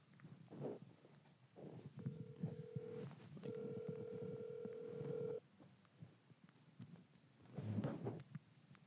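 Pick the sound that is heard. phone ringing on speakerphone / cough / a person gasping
phone ringing on speakerphone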